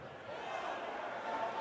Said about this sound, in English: So here's a crowd going nuts when a dart player throws, I don't know, a 9 dart leg, whatever that is.